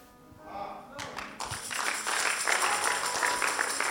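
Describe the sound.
A brief bit of talking gives way to an audience breaking into applause, dense overlapping claps that swell quickly and keep going steadily and loudly to the end.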